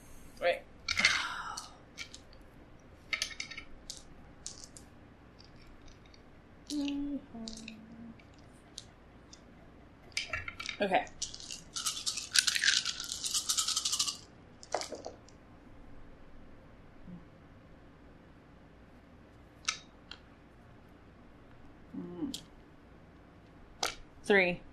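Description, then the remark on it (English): Ten dice clatter and rattle in scattered sharp bursts, with one longer rolling clatter in the middle, moderately loud, with faint voices murmuring now and then. “So 10 dice again.”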